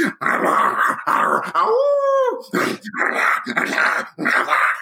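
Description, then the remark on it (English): A person mimics a wolf, voicing the character Man Wolf, with rough, growling vocal bursts around a single drawn-out, rising-and-falling howl in the middle, loud and continuous with only brief pauses. “What? You can't speak wolf? You need an English translation?”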